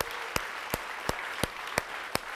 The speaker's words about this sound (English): Can we give the Lord a big hand clap now and say, thanks, Lord.